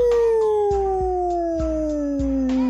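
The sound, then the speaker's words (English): A wolf howls in one long, loud, unbroken note that slowly slides downward in pitch, with a few dull thumps sounding beneath it. “The Wolf.”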